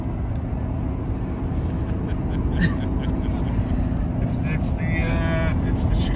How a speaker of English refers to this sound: I'm in the car with Will Perdue, who's dropping me back to the hotel